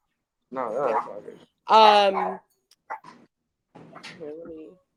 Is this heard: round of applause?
no